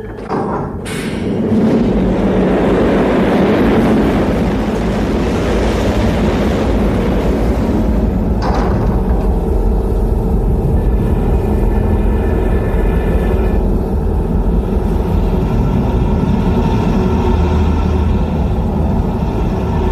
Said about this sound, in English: And of course, we're referring here to the scene at the beginning of Dune, where the Padishah Emperor talks to the Stage 3 Guild Navigator in a large device with lots of mechanical noises and steam involved.